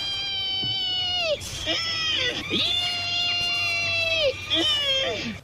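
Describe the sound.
A person imitates a pig's squeal: three long, shrill, wavering squeals, each ending in a downward slide, loud and strained, with a faint low hum beneath.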